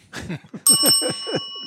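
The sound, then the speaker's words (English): A single bright bell ding rings out partway through and its clear tone hangs on to the end, sounding over a person talking. “Give myself a bell for that.”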